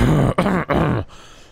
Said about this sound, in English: That's because he's putting his radio voice on, so he coughs.